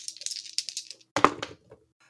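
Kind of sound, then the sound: dice being rolled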